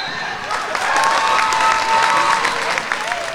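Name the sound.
crowd applauding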